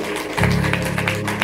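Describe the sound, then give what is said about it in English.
A crowd claps their hands for God in a steady rhythm, sharp bursts about three times a second, over a sustained low musical drone that starts a moment in. “Clap your hands for God.”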